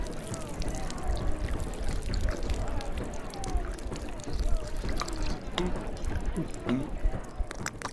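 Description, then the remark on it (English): Water is poured steadily for several seconds for someone to drink, a continuous splashing trickle, while indistinct voices murmur in the background. “Water. Drink and be well, brother.”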